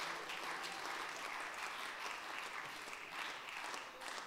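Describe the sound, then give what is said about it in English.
An audience claps their hands in praise to God in a dense, steady wash of applause that holds at an even loudness throughout, with no clear individual beats and no voices standing out. “Clap your hands, all ye people, and shout unto God with the voice of triumph.”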